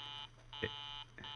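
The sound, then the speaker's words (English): A telephone busy signal heard while calling Mayor Terwilliger: a harsh, buzzy electronic tone pulsing on and off in steady half-second bursts with short gaps between, fairly loud, with no voices. “Line's busy again.”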